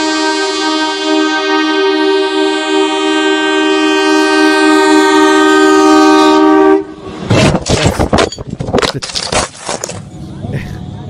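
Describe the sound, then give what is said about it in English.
A loud, sustained train horn blares steadily for several seconds, then cuts off as the train roars past, its wheels clattering and rumbling in heavy bursts along the tracks. “Did this guy really want views so much that he was willing to, you know, experience a brush with death on these train tracks?”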